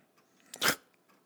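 Pyro, a pet, tears into toilet paper on the floor: one short, crackly ripping burst, sharp and bright, rising out of a quiet background with faint rustles before and after. No one speaks.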